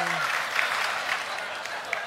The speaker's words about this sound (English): You can clap all you want, but this is the body of Christ.